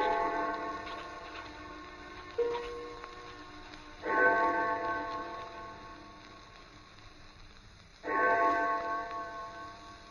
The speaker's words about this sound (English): I had no idea how long I worked until I heard the clock of St. Jude's in the distance. It was 4 o'clock